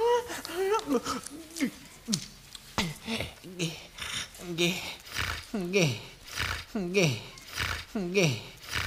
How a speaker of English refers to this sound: Stop breathing so heavy, please, we gotta study.